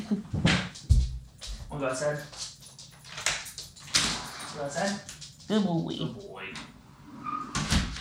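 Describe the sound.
A door opens with a few clicks and thumps as Charlie, a dog, moves about and whimpers briefly while being let outside in Atlanta, as people talk over the commotion.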